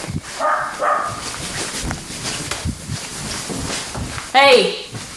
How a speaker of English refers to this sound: And it was, oh, this dog, I'm sorry. It's okay, yeah, go deal with him.